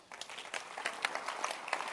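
A crowd claps in a dense, irregular patter of many overlapping hand claps, steady and fairly loud for a couple of seconds, with no voices over it.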